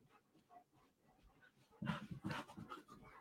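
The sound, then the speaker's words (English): A large 100-pound dog named Bear pants, starting with soft breathy huffs and then breaking into louder, rapid rhythmic breaths for the last second and a half. “What's that dog's name? Which one? The 100 pounder.”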